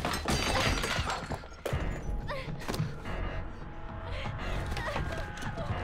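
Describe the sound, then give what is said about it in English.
A woman breaks through the glass panel of a back door, which shatters loudly in a dense burst of crashing and breaking glass with a sharp second impact partway through, followed by scattered tinkling debris. “Unable to get it open, she breaks through its glass panel, with Michael closing in behind.”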